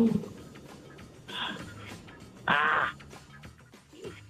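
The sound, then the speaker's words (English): A harsh, nasal electronic quiz buzzer is pressed during a trivia quiz, blaring briefly, with a softer buzz before it, over a quiet noisy background; the louder blast lasts about half a second. “Fast with that buzzer.”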